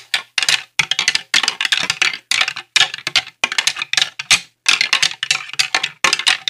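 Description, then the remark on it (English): A rattle bag clatters loudly in quick, steady bursts of dry clicking, broken by brief pauses every half second or so, mimicking the knock of sparring antlers. No one speaks. “everybody's out there with a rattle bag and they'd sit there and chee, chee, chee”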